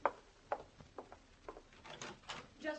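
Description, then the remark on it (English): A door is opened with a series of sharp clicks and rattles from the latch, followed by a soft creak and shuffling as it swings, with no one talking. “Open it.”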